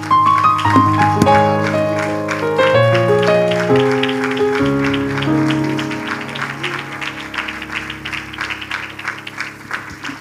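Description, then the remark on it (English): An audience claps hands together in praise to the Lord, in steady, dense applause, the rapid claps layered over sustained keyboard or organ chords that shift pitch and gradually soften toward the end. “Would you just give the Lord another hand clap of praise?”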